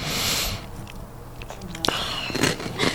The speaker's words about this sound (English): All I got is you chewing in my ear, so I don't know.